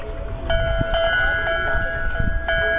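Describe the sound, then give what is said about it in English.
A metal pyramid-shaped wind chime, set up at a shop on the pier in Monterey, rings with bright, sustained tones, struck again roughly every half second so the notes overlap and shimmer, over a low rumble of wind. “Here's a metal one in the shape of a pyramid.”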